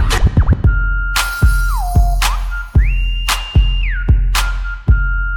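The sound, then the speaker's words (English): A shrill whistle tone holds steady notes and glides up and down between pitches, riding over a heavy, punchy beat that thumps roughly every second. “Get off my blow the whistle. Blow the whistle. Blow the whistle.”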